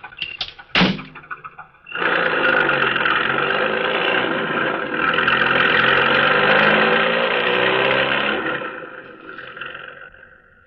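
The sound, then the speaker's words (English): A car door thumps shut as the driver gets back into the car, which is stopped by a vacant lot. The engine then roars to life and revs loudly as the car speeds away, the sound holding strong before fading off at the end. “Then, when the task is completed, the driver re-enters the car and speeds away.”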